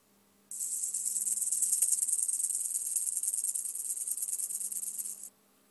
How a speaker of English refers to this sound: Hear that, boy? It sounds like a snake.